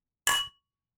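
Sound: beer glasses clinking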